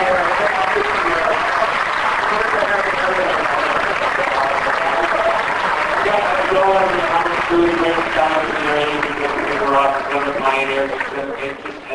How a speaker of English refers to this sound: there's a gentleman named Peter Loft who's brainchild Smallville was 8 years ago. We should all give him a big round of applause.